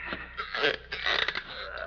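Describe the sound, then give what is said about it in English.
An old office chair creaks in a couple of drawn-out, strained groans over about two seconds, fairly quiet, with no one speaking. “Have to get a new chair one of these days.”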